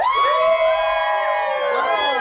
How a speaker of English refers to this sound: Okay, so it's time, guys. We're going to do this gender reveal. Okay, so it's Team Tapatio or Team Cholula. So if you think we're having a boy, cheer.